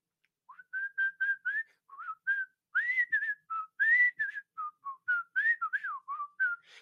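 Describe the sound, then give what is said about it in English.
A person whistles a bouncy TV theme tune, short clear notes rising and falling in a steady, jaunty rhythm, with no talking over it. “I can't whistle right now for something.”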